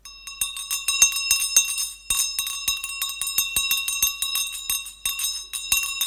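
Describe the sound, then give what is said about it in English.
A hired hand bell rings steadily for several seconds, its clapper striking again and again in a quick, uneven rhythm while the bright metallic tone keeps sounding, fairly loud, with no voices. “I brought myself a bell here today.”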